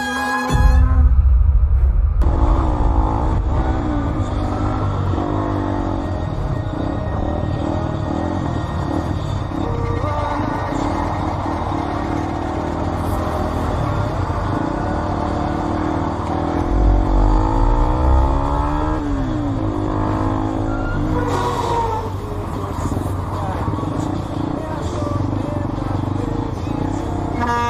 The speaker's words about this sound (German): Das Motorrad rast davon, aber der Mann im Auto folgt.